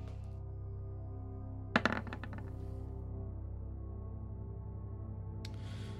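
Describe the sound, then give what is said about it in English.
A D100 percentile die is rolled during a tabletop role-playing game, clattering onto a hard surface: a sharp burst of rattling clicks that quickly bounce and settle within about half a second, over a steady low hum. “What you rolling a D100 for?”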